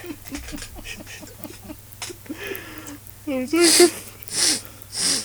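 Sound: imitated sniffing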